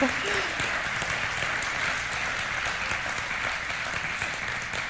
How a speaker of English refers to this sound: Yes, you can clap and say, praise God.